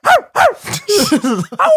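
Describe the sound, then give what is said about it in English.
A person imitates a barking dog with a quick run of five or six loud, voiced yelps and woofs, each rising and falling in pitch, with short gaps between them. “Oh my God, do you have a dog? Nah. Nah. I am a dog.”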